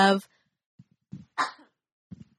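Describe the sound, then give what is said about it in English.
A single sharp, loud sneeze bursts out near the middle, between brief bits of voiced sound and low murmurs. “Bless you.”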